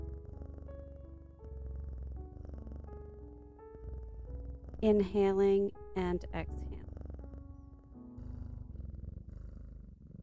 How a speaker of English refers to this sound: Now, focus your attention on the sound of a cat purring. Imagine yourself in a quiet room with a beautiful cat comfortably resting nearby, purring softly. Start to breathe in rhythm with the cat's purring.